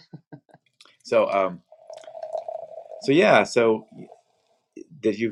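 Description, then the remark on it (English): A drink is poured into a glass, a steady, gurgling stream lasting a couple of seconds, with short bursts of voice before, during and after the pour. “Well, can I pour you a drink?”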